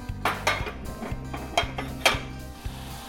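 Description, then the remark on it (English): A few sharp metallic clinks and knocks as a pot is handled on a stove to bring it to a boil, spaced irregularly over a low steady hum, moderately quiet, with no talking. “Okay, I'm gonna bring this to a boil.”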